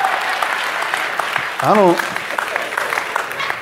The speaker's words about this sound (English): Yes. You can put your hands together for that. If you married and you ain't clapping right now, you're the dumbest man on the planet.